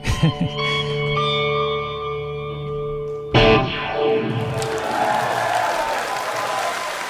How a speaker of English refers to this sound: That crazy pedal you hear at the end there is a Boss Terra Echo.